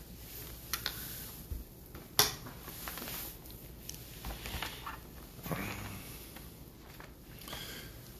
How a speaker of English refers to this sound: Let's go to Psalms 116, and I'll sip of water while you turn there.